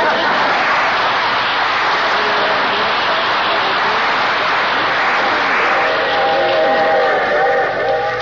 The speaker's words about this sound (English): Boy, I hate these long train rides, especially to see that old gutter inspector.